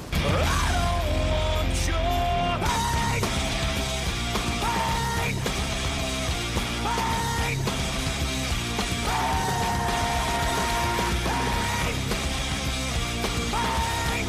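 A loud, dense heavy metal song plays continuously on Talk Radio 77 WABC, with distorted guitars, pounding low-end drums and strained, yelled vocals riding over the wall of sound.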